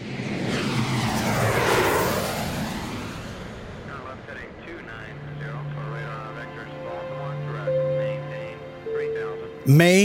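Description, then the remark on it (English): The engines of a Challenger private jet flying over Asia roar and sweep past loudly at first, then settle into a steady low cabin drone while people talk over it; a sharp louder burst ends it. “The young businessman settles back in his Challenger private jet.”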